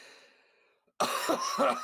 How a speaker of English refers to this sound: I'm sorry, I had to clear my throat.